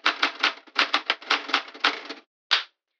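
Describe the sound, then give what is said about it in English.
Rapid mechanical typewriter keystrokes clatter in a fast, uneven burst for about two seconds, then pause before one final sharp strike, fairly loud with no voices. “And don't touch my typewriter!”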